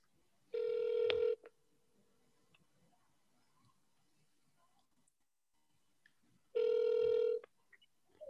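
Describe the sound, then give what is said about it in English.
A phone line rings out twice as someone calls a friend, each ring a steady buzzing tone lasting about a second, separated by a long quiet pause. Loud and clear, with no one talking. “I'm going to phone my friend Sandeep.”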